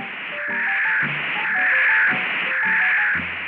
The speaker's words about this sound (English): Then the static came to a roar.